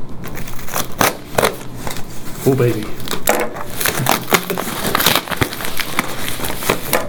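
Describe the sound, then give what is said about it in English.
A parcel being opened with scissors: a busy run of sharp snips, crinkles and rustling packaging clicks throughout, with a short spoken exclamation partway through. “So perhaps someone opening a parcel with a pair of scissors.”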